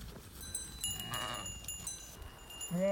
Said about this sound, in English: Whoops. Okay, the sheep are coming very close now.